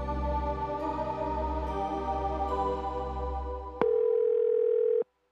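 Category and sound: signal or alarm, telephone dial tone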